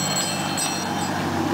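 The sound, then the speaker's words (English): A steady, continuous jingle of four or five bells hung on a string by the driver's rear-view mirror of an ice cream truck, bright and sustained over a low rumbling background, with no one talking. “And it's just jingly bells.”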